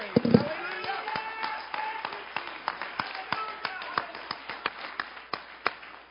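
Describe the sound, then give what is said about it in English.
A church audience claps in response to a call to give God a mighty hand clap, a scattering of sharp handclaps repeating steadily for several seconds while voices call out and murmur underneath. “If you believe that, give him a mighty hand clap.”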